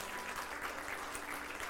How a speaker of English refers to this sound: Man, will you please just give God a round of applause, because he deserves it for what he's done.